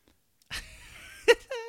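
person yawning

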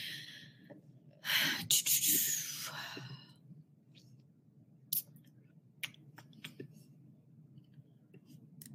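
drinking water

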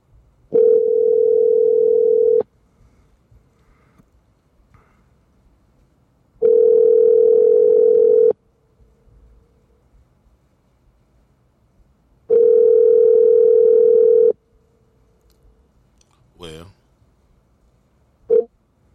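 telephone call ringing tone

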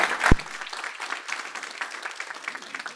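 audience applause

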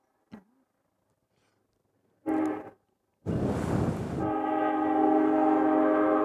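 train horn

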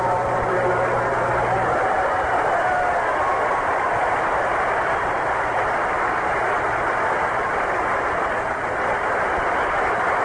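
stadium crowd applause

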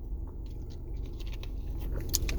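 drinking water

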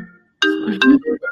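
phone ringtone

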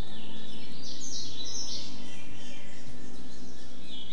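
birds chirping

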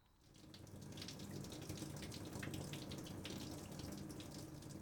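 shower water running

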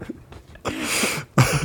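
dog sniffing

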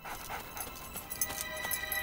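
dog panting and whimpering

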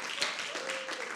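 audience applause

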